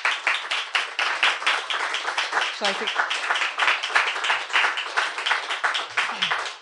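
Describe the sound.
A crowd applauds steadily after a book reading, dense overlapping claps at a fairly loud, even level, with a few faint voices and a brief whoop mixed in.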